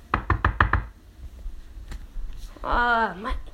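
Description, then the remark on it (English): Five heavy, rapid thuds of footsteps in Timberland boots stomp in quick succession, then silence, followed by a short voiced exclamation near the end. “Oh, my footsteps. I wore my Timberlands today.”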